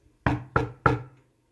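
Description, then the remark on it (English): Three firm knocks on the door of a house, evenly spaced, each one ringing out briefly with a hollow resonance before the next, then silence. “Emilio heard someone knock on his door.”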